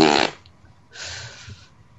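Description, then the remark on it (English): A loud, close-up fart bursts at the start with a harsh, raspy low rumble, followed by a softer, breathy hiss trailing off after a short pause; no one speaks. “I just farted, and the microphone's right next to my butt”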